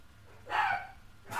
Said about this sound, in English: And then some barking dogs.